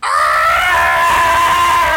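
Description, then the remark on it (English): A voice imitates a frightened ghost with one sustained, wavering high-pitched wail that holds steady and loud for about two seconds, bending slightly at the end. “A ghost who's scared of itself.”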